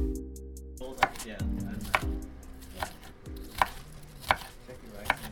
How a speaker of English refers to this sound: A culinary experience at the St. Faustina Church. A group of students chop, dice, and boil through recipes together.